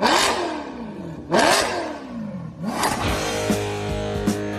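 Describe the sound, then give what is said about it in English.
An engine revs hard three times in quick succession as the intro sound effect of the automotive program You Oughta Know with Dave Stahl, each burst sweeping up in pitch with a loud roar, the last settling into a sustained rumbling idle. “Buckle up and start your engines.”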